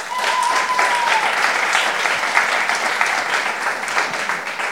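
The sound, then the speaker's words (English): A crowd of audience members who are producers claps steadily in answer to a show-of-hands question, a dense wash of many hands applauding at an even loudness throughout, with a brief thin whistle-like tone near the start. “Tell me, if you're in the room and you are already a producer and you have a podcast, you know, working on some element of a podcast now, clap your hands.”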